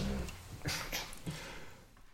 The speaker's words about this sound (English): Probably hear that. My dog is making big fat guy noises.